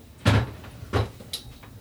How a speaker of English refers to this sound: Tim's going to look in his drawer.